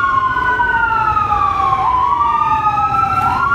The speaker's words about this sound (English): The fire truck.